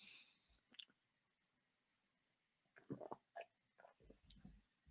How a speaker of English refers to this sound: Excuse me. Let me just get a quick drink of water.